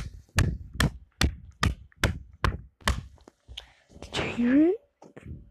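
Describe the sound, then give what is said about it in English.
Seven crisp slaps on a phone case in a steady, quick rhythm, each sharp and fairly loud, followed by a short voiced sound with a rising pitch. “Yeah, it makes a slapping sound.”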